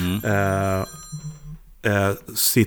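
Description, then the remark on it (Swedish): A phone rings twice in loud, steady electronic tones, with a short pause between rings and a quiet hum in the gap, then a brief voice begins at the end. “Sorry att det ringde.”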